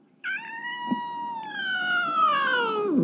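A single long, drawn-out meow from a 14-year-old cat, fairly loud, starting high and sliding slowly downward over about three seconds with a whiny, complaining tone. No talking.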